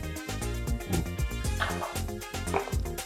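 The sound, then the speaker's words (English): A person mimics a dog barking with a quick, irregular run of throaty woofs and yips, fairly loud, filling the whole few seconds. “No, I'm getting the hang of being a dog. I'm like, ora furu, a bow wow.”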